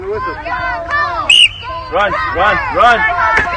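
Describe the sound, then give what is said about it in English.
A sharp whistle blast starts a youth football tackling drill, then excited shouting and cheering from a crowd, with a dull thump as the running back puts his head down and hits a roughly 10-year-old kid amid the yelling. “So that thump that you hear is literally, I tweeted the video out, you can watch for yourself, but the thump that you hear is literally the running back putting his head down and cranking this little kid.”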